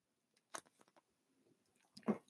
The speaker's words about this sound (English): I had to take a sip of water.